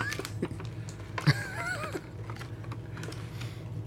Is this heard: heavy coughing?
no